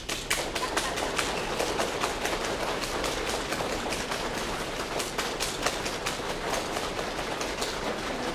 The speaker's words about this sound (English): Another really simple, easy proprioceptic practice, or to feel safe in space practice for people, is to literally pat their legs.